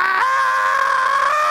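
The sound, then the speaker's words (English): A man lets out a single loud, sustained yell, a raw drawn-out shout that holds steady for over a second with strong harmonics, voiced as a demonstration with no other talking. “As soon as that thing opened up, there in the dark, I ripped a yell.”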